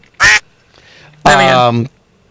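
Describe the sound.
A duck quacks twice, loud: first a short, sharp quack, then after a brief pause a longer, drawn-out nasal quack, with nothing else around it.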